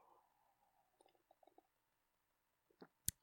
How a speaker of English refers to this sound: Taking a sip.